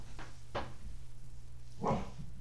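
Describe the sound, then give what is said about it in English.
A female dog growls at the floor in three short, gruff bursts, two close together and one after a pause, over a steady low hum with no talking. “She's just growling at the floor.”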